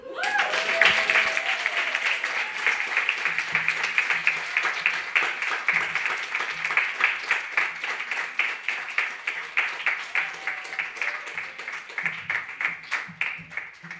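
A crowd applauds steadily for the full stretch after a performer's debut, with dense overlapping claps and some sharper individual hits standing out. The applause is loud, with a few faint cheers or voices mixed in near the start.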